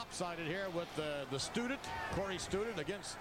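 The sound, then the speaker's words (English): Several dull, heavy thuds land at uneven intervals as wrestler Matt Bourne, as Doink the Clown, stomps the back of Student's head on the wrestling mat, mixed under loud, continuous voices. “Stumped to the back of the head there on Student.”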